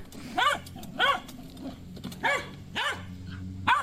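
A corgi named Remy barks in short, sharp yaps, five of them spaced unevenly over a few seconds, each bright and mid-pitched, with a low steady hum underneath and no talking.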